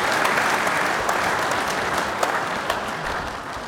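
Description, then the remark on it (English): A steady round of applause from many hands, dense and continuous clapping at a fairly loud, even level for several seconds, with a few sharper claps standing out and no voices. “That's another round of applause for them.”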